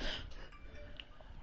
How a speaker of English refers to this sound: Excuse me. Sorry, I was yawning.